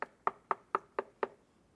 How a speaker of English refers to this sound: He stands at the door like a gentleman and knocks.